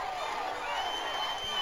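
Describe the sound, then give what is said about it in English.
A large crowd roars and cheers in a steady, dense wash of noise, with many voices blending together and no single voice standing out. It holds at an even loudness throughout. “Listen to that crowd.”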